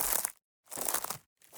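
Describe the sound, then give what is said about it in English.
Three dry crunching bursts in a steady footstep-like rhythm: the hay-like bristles of a standard yellow broom pressed and crushed as Foley for footsteps on foliage or grass, with short silent gaps between each step. “Most of the time when we're just putting in footsteps that are on foliage or grass or whatever, we're just crunching that as we're watching the screen.”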